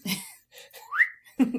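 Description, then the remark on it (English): A man whistles one short, rising, breathy note after an airy exhale, greeting his pig at his home in the forest, then lets out a brief voiced sound. No words are spoken. “The man heads back to his home in the forest and greets his beautiful pig with a whistle.”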